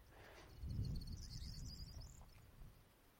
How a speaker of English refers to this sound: There's a corn bunting right beside me. Corn bunting. They're really dumpy birds. This is perfect. Yellowhammers and corn buntings.